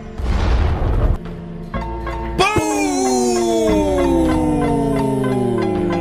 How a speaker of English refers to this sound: It was there. I heard it. It's kind of still playing in the background. I'm not really sure what's going on. I don't know what's happening. So explosive. The explosion could not be contained.